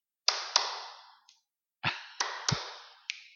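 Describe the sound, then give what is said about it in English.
Hand claps mixed with finger snaps in an uneven rhythm, about seven sharp hits in all, some fuller and some thin and crisp, each leaving a short ringing tail. No one speaks. “Couldn't clap and snap her fingers.”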